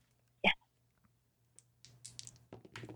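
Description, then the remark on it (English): Two dice being rolled to decide who takes their turn first in a game: a sharp knock, a brief pause, then a run of quick clattering clicks as they tumble and settle, fairly quiet, with no talking. “We'll begin by deciding who gets their challenge first with a roll of two dice.”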